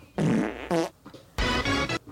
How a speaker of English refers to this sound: fart noises.